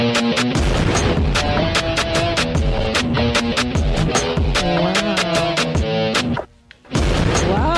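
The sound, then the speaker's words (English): Loud explosion sound effects boom again and again in quick succession over busy orchestral music, with a brief near-silent break before the blasts resume. “Oh, violins, everybody. Explosions higher, yes.”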